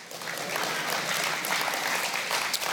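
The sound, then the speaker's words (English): An audience bursts into steady, dense applause, many hands clapping at once in a continuous, even roar with no voices rising above it. “And what you find, and this is what I love about the book of Psalms, you can clap at that, yeah, or no.”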